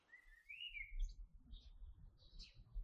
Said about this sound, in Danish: Det er søndag morgen, og det er lige begyndt at blive lyst. Fuglene kvider og byder den nye dag velkommen. Det er en flot sommermorgen med skyfri himmel, og der er næsten mennesketom i gaderne.